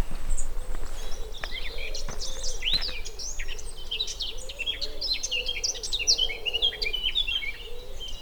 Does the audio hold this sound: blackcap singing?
yes